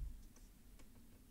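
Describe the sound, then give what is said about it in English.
Several soft, scattered clicks of dice tumbling and knocking on a hard surface, quiet, with no talking over them. “Right, watch me burn these dice for no useful effect.”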